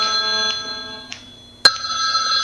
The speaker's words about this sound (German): Jetzt klingelt mein Handy. Ja. Ich denke, ich muss es.